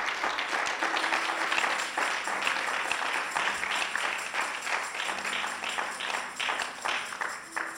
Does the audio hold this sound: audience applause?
yes